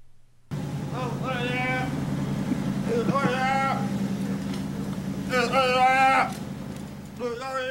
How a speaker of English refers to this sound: Well, yeah, because his tongue had just been cut out, so of course, you know, you have to make weird gurgly noises. But we go above and beyond. We're actually going to play the noises for you.